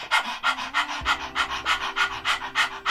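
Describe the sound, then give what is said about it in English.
A person imitates a dog's rapid panting to demonstrate the breath of fire breathing technique, about a dozen quick, breathy huffs in a steady rhythm, fairly loud, with no talking. “It's the breath that dogs use, the technique, when they're panting. They're doing it like this.”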